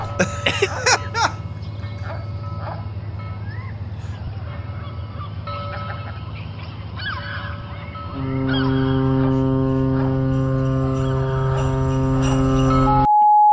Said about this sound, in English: Why are there seagulls?